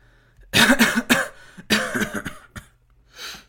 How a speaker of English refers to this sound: you have a cough there, are you fine?